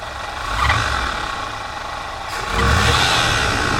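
An old Chevy pickup truck engine runs with a steady rumble, revved by hand at the carburetor, revving up twice, once briefly early on and again more strongly toward the end, with no one talking.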